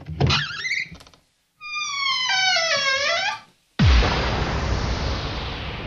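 A descending whistle falls in pitch, cuts off briefly, then a loud booming bomb explosion bursts in and rumbles as it slowly fades. No voices are heard.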